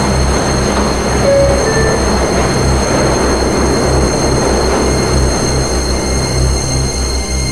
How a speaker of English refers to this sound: Is a Queens-bound E-train via the F line. The next stop is 42nd Street, Bryant Park. And clear of the closing doors, please.